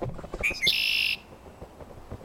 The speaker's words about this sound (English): There is a circle of blackbirds just flying in a circle around the chessboard. Blackbirds? Yeah, blackbirds, and they're all squawking.